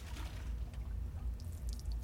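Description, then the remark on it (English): A floppy mop dunks into a bucket of soap and water, ready to wash a swept floor, with sloshing and a few light drips over a low, steady rumble. No voices. “He fills the bucket with soap and water. Then he takes the floppy mop and dips it in.”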